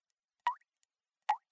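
Two clear water drips heard in a living room land about a second apart, each a sharp, bright plop with a quick upward pitch bend, separated by near silence.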